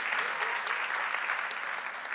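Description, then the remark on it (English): An audience claps steadily, a dense wash of many hands at moderate volume with no gaps, keeping an even level for the whole stretch. “Yeah, you can clap.”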